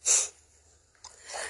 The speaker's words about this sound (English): Bless you.